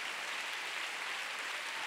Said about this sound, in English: Oh, if you love Jesus, why don't you give him a big hand? Oh, hallelujah. Come on, go ahead and give God a big clap.